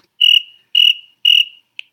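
Three loud, evenly spaced cricket chirps, each a shrill buzzing trill, followed by a short, faint fourth chirp, with silence between them and no voices.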